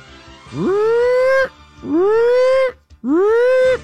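A panic meter alarm sound effect: three loud wailing tones, each swooping upward in pitch and then holding steady for about a second, repeated with short gaps and no talking.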